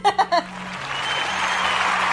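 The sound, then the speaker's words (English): Three quick bright bursts open into a steady wash of crowd applause, a dense, even clapping sound effect that holds at a constant level to the end. “You can put in like a clap noise.”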